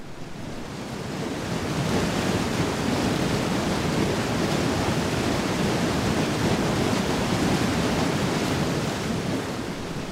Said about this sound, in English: I turned the microphone or walked further downstream, the sound changed, the speed of the water increasing as the course narrowed, rapids, the sound of water splashing against the sides, or a small widening in the river creates a kind of bay.